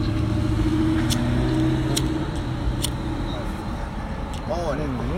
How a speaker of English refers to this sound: I got a hole in that car. With that growl in there.